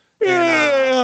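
A dog named Zeus gives a loud, drawn-out vocal yawn lasting about a second, a steady whining tone with rich harmonics that sinks slightly in pitch before cutting off.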